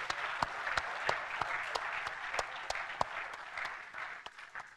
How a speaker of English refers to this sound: Let's give God and Anna another round of applause.